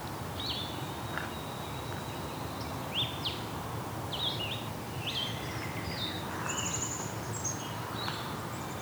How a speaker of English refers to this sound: Okay, we've got a blue-headed vireo singing here. Very sweet-sounding vireo song. Sounds like saying vireo, vireo.